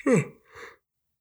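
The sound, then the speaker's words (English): A single yawn: a brief voiced groan that slides downward in pitch, followed by a softer breathy exhale, then silence. No talking. “Oh man, sorry, I keep yawning.”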